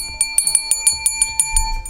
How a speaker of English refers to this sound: Here's the bell of summer tips.